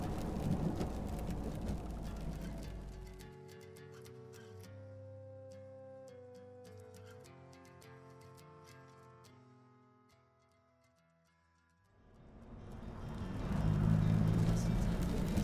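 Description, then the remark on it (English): A car drives through steady rain, following another car away from a casino, with a rushing wash of road and water noise that fades out for a stretch of soft sustained tones before swelling back up loudly. “Now follow that car.”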